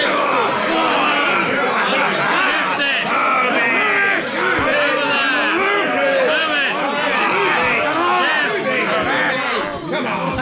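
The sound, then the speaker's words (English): A rowdy crowd of men and women, acting as roughnecks jostling and pushing a doctor, shouts and yells over one another with calls like "Move it" in a dense, continuous roar of overlapping voices, loud and steady throughout with occasional sharper whoops and bellows. “You're a bunch of roughnecks, and they're women as well.”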